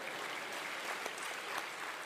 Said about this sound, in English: Yeah, you want to clap for dogs? Let's do that.